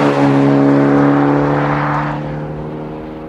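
A sports car engine revs loudly with a deep, steady droning growl that slowly winds down and fades over a few seconds. No one speaks.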